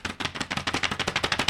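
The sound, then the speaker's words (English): A quick drum roll: a rapid, steady stream of sharp, crisp strikes that swells a little louder toward the end, with no voices. “Are talking about, drum roll.”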